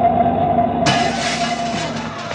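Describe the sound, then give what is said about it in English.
A truck's engine roars steadily, then a sudden loud, hissing rush of noise bursts in and holds as the vehicle sweeps past in a near miss with the truck. No one speaks. “Hey, did you see me miss the truck, boss? And ruin the front of this store.”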